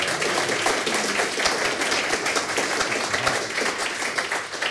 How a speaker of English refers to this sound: Big round of applause.